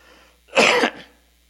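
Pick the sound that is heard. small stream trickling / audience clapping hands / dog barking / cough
cough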